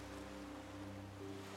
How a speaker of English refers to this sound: You can hear the sounds of the ocean, but you don't see any water or windows.